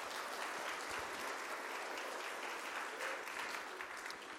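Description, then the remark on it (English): An audience claps steadily for several seconds, a dense, even wash of many hands at a constant loud level, with no voices rising above it. “Okay, give her a big round of applause.”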